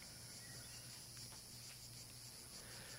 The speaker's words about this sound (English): You draw your bow. And as you do so, the sounds of cicadas can be heard.